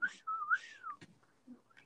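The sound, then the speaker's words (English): A person whistles a warbling, wavering tone that rises and dips, imitating R2-D2's robotic beeps, then a sharp click and a few faint chirps follow. “I saw a video where there was a bird doing the R2-D2 sounds.”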